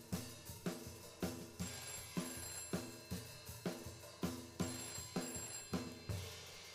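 A telephone rings with a steady, rapid series of bright, metallic bursts repeating for several seconds, with no one speaking.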